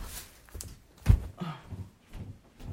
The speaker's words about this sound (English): However, Oh, Lord, somebody's banging on my door. Hold on.